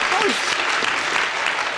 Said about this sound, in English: Weird that the audience is clapping. Well, they're kind of behind him almost. They definitely put one of those applause signs up for that.